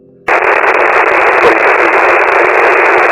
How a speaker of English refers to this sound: A message came back, barely a message, the interference so great.